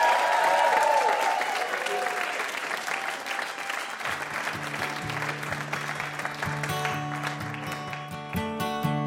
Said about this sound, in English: And have a huge round of applause for our VIP, Adam Rapoport.